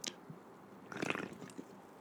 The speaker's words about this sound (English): I'm here with a blue monster, and let me drink this for you because I know that you love to hear me slurp.